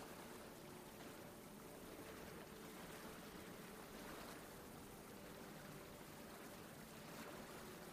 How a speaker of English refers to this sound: Today's meditation is going to begin on a sandy beach. It's a warm day, and you're sitting on the warmed sand. The sun is high in the sky. You can hear the water crashing on the shore.